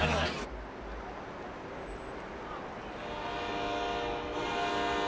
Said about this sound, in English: Okay, that's your train, kid.